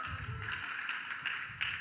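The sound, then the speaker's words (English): An audience claps in a steady, dense patter of many hands, a bright crackling wash of applause that holds at an even level for the whole moment, with a few sharper claps standing out. “Wow, already an applause, hurrah.”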